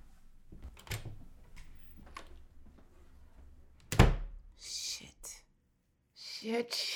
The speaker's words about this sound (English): the door flies out of her hand and slams shut.